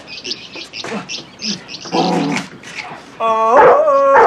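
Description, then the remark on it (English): A dog, Butkus, Sly's dog, yaps in a quick series of short, high-pitched barks, then breaks into a louder, drawn-out whining bark, with no one talking. “I think you mentioned earlier on the dog. Was that Sly's dog?”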